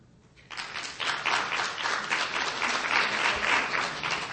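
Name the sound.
audience clapping hands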